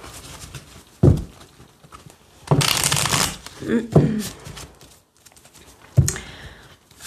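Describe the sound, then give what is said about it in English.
A deck of tarot cards being shuffled: a few sharp taps and slides, then a longer crisp riffling burst, followed by more brief shuffles with a faint voice murmuring underneath. “Let's get one more shuffle.”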